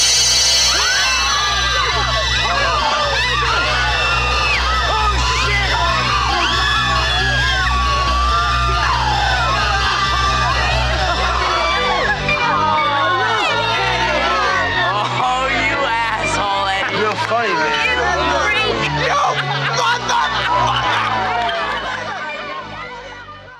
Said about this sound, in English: all that screaming at the end of that clip is because Eddie, Pervy Eddie, came out in a mask and scared everyone